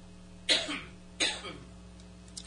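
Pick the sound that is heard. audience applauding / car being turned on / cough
cough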